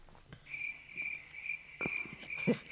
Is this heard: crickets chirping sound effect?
yes